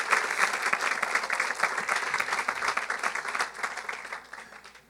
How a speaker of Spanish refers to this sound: ¡Perfecto! ¿Por qué no le dan un aplauso?